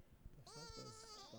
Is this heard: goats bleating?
yes